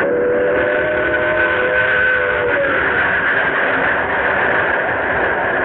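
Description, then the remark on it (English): The 11:55 train arrives on time with a steady, loud mechanical roar. A sustained whistle tone sounds over the first half and then drops away, leaving the continuous rumble of the train. No one speaks. “Here's the 11:55 now. Right on time.”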